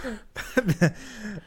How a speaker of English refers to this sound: She graciously decided to say measure up into my phone that I was holding in her face. And we are grateful. Without further ado, the listener's favorite part of the show. Measure up. COVID cough.